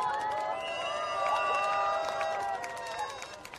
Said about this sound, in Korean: 광노현 촛불행동 고문님을 여러분의 큰 박수로 모시겠습니다.